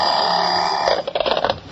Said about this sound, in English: Here goes the alarm clock.